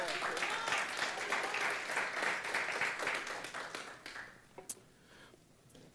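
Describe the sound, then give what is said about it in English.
An audience breaks into sustained applause, a dense wash of many hands clapping that holds steady for about four seconds, then thins and fades out, leaving only a few scattered claps. “Give them a round of applause, church.”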